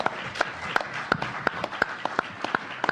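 An audience applauds to welcome a guest called up to play, with a steady rhythmic clapping beat, about eight sharp claps in quick succession, over a continuous wash of crowd noise. No one speaks.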